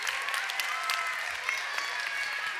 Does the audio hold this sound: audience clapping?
yes